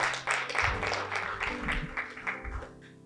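A crowd applauds with steady, dense clapping for about three seconds, tapering toward the end, with a low hum of voices or music beneath it, clapping for having purchased about 50% of the equipment for a launch.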